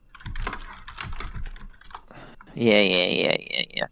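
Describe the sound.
Close, crisp keyboard typing, a quick irregular patter of key clicks for a couple of seconds, followed by a short burst of a person's voice as the typing stops.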